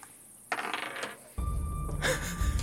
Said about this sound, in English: I will roll the dice.